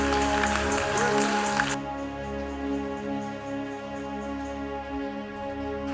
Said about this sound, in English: Are you clapping or you are trying to clap?